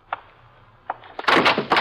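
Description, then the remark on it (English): A door opens as someone enters: two soft clicks of a latch, then a louder rattling, creaking burst as it swings open. No one speaks. “Shh, somebody's by the door.”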